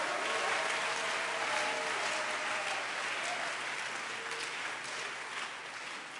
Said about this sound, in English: Give the Lord a wonderful, wonderful clap of hands.